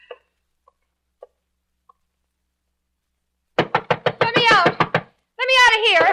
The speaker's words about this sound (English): Go bang on the door and yell, let me out, let me out. Then the guard will know I'm untied.